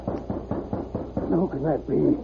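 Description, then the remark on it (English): About five steady, evenly paced knocks on a heavily bolted wooden door, fairly loud, followed immediately by a voice talking. “Baldy was cleaning the rifle and six gun that were never far from his side when he heard a rap on the door”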